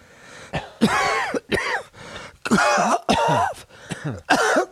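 A person coughs repeatedly in a loud series of harsh bursts, about six in quick succession with short gaps, some ending in a raspy, throat-clearing rattle. No one speaks.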